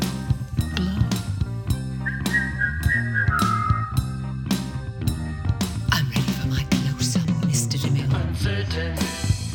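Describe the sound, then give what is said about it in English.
A brief human whistle rises out of a busy musical backing with steady beats, holding a high tone for about two seconds before sliding downward and fading into the music. “You know how to whistle, don't you? You just put your lips together.”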